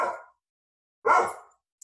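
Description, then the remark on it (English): A dog gives two short, gruff woofs separated by a brief pause, with the start of a third cut off at the end, with no talking. “Well, you got a woof of approval from my dog.”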